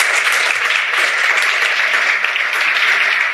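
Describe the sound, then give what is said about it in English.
A round of applause from an audience for the panelists of a public safety panel discussion, dense and steady clapping that holds at an even, fairly loud level throughout without breaks or voices. “One more round of applause for our panelists.”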